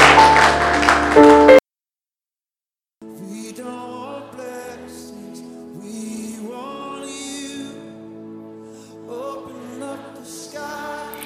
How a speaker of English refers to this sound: Why don't you clap for Jesus as you take your seats?